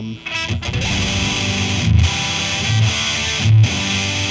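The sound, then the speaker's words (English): A distorted electric guitar plays sustained chords, crunchy yet clear, with a few rhythmic accents and a steady background hiss. No one speaks. “Really nice crisp clean distortion, as you can hear, even with the setup I have.”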